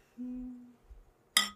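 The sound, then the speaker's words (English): A single bright, ringing clink of glasses touching in a toast, fairly loud, arriving near the end after a low steady hum and some soft thumps. “I'll cheers to that.”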